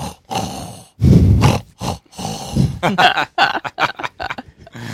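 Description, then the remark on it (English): A voice mimics gentle snoring, imitating a character who has fallen asleep standing up, holding a book with his eyes shut: a few long, breathy, rumbling snores, followed by a quicker run of higher, wheezing vocal noises. “And he starts to gently snore. And when he snores, it goes...”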